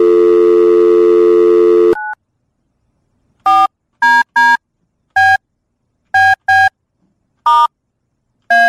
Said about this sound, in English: There's no chance if you can't hear the dialing that you're gonna do it successfully. Let me see if I get a dial tone here.